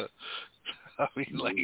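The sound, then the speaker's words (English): Heavy, rasping breaths into a phone line: a long exhale, then several quicker gasping breaths in an uneven rhythm, fairly loud against the quiet between them. “Who the hell is breathing hard?”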